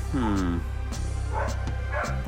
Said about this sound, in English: Well, now my dogs are going crazy. So, we're just going to end this here.